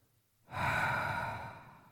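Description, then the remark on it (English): A single slow, breathy exhale, breathing out to soothe and relax the body, begins after a brief quiet pause and streams out steadily for over a second, softly fading toward the end. “Starting always with breathing out.”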